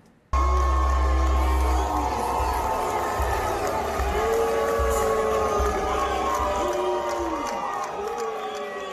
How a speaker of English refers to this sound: He was getting booed down in Georgia. The devil was down in Georgia, but so were the boos. Here's what happened at the Georgia Republican Convention to Brian Kemp.